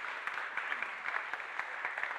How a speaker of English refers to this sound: Let's give them a clap. Thanks, guys.